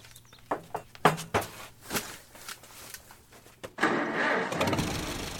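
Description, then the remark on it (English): A series of sharp metal clanks, made by gently knocking a stick against metal, sound at uneven intervals and fairly loud. An engine then starts up with a steady rumbling hum. “The metal clanks as she steps onto the tractor are me gently knocking a stick against the side of our”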